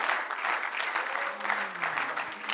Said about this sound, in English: In the name of Jesus, would somebody just clap your hands louder than you've clapped them at all, louder than you've clapped them any time this morning? Hallelujah.